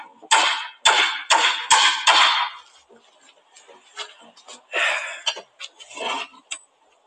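Five sharp, loud hammer blows on a nail land in quick, fairly even succession, followed by a looser scatter of lighter taps and knocks.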